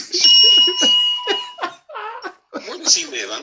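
A bright bell dings once and its clear metallic tone rings on for over a second, while people laugh and chatter loudly over and after it.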